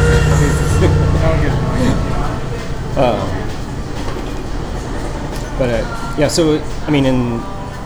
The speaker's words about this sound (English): train pause. There you go, train pause. It only comes by 80 times in 24 hours.